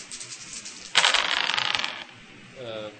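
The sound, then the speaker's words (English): Four dice clatter and rattle across a hard surface for about a second, a busy tumbling that starts abruptly and settles quickly, with quiet background noise before and after; the dice are rolled for a throwing-knife attack. “So 4 dice, so then so 5 and 8.”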